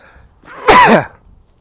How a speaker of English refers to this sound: Excuse me. Just sneezing. A little bit of coronavirus and or hay fever, probably more hay fever, although my eyes are not itching very much, so probably is a virus.